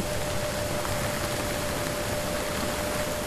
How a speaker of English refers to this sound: Also recorded a lot of ship noise